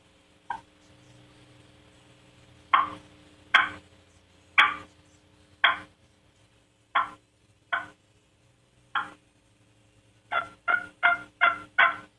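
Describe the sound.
Imitated turkey hen soft tree yelps, as of a hen waking up in the morning: about a dozen short, nasal notes, spaced out at first, then quickening into a tight run of five at the end. No talking.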